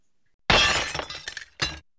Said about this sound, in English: The sound of broken glass hitting the floor in the hallway and on the street outside, followed by a thud, indicates that the assassin must have jumped through the window.